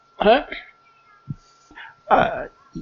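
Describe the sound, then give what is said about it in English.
A person voices two drawn-out, meow-like cries, one near the start and one toward the end, with brief low vocal sounds between them, fairly loud. “Probably accompanied by a gaggle of cats or something that he's been chatting with.”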